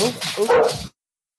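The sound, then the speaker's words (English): A dog barks in a short, loud burst of a couple of yaps, with a slightly whiny, vocal quality, then falls silent. “My dog friendly. Yeah, you know, he had a talk for me. He's just as vocal as I am.”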